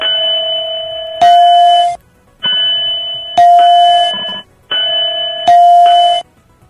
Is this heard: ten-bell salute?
yes